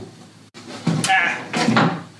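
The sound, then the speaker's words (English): A folding attic ladder swings open, two loud creaking, scraping bursts of hinges and wooden sections unfolding, one right after the other, with no talking. “So, ladder, open up.”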